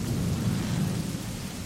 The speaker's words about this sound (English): And tonight we're coming to you live from an old ship. Listen. There we go. Might sprung a leak. It's a windy, rainy night, and we are aboard an old ship.